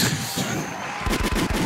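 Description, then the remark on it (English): A rough, noisy rumble gives way to a gunshot sound effect: a quick burst of five or so loud, sharp gunshots fired in rapid succession, with no voices. “Yeah, Remy is definitely a gunshot.”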